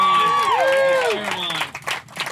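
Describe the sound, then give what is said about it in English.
An audience whoops and cheers on a man called up in front of them, with rising and falling shouts, then scattered clapping breaks out, lively, lasting a couple of seconds. “Come on, guys. Let's cheer him on.”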